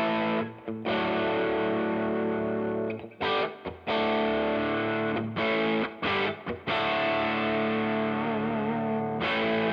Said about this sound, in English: Yeah, dude, sounds like arse, doesn't it? Yeah. So I've got a Princeton model on here with a Tube Screamer with a bit of spring reverb, which is what you find on the amp. Yeah. And it sounds so close to the real thing.